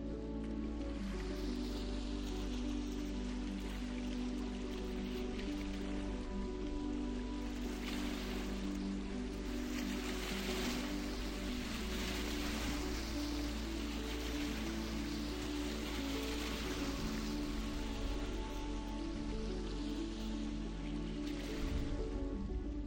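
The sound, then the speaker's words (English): Steady water ambience along the shore of the Sea of Galilee near the region of Capernaum, with continuous gentle lapping and splashing that swells now and then, heard alone without any talking for the whole stretch. “Right now, I'm standing on the shore of the Sea of Galilee, and just behind me is the region of Capernaum.”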